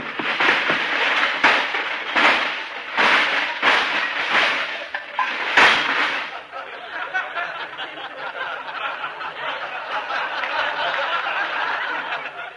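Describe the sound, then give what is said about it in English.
A toy electric train in a store's toy department: noisy, hissing bursts pulse in an uneven rhythm for several seconds, then settle into a continuous, fairly loud rattling rumble with no talking. “That was an electric train.”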